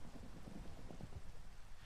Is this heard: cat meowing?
no